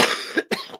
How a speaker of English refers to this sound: And again, guys, I apologize if I cough.